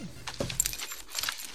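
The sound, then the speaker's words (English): A bunch of rental car keys jangles in a quick burst of bright metallic clinks, shaking and rattling for over a second with no voices present. “Rental car keys.”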